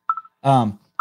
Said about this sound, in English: That's someone trying to call into the show. It says Matt's iPhone 11 from Louisville, Kentucky.